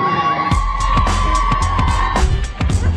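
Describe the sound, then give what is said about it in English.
A small crowd of about 23 spectators, friends and family only, cheers and whoops loudly and steadily for a few seconds after an Eagles strike into the upper corner, with scattered claps and a sustained whistle-like tone running through the noise. “How about that crowd? Attendance 23.”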